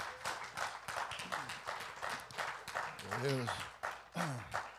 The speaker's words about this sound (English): Let's give him and the Lord a hand clap.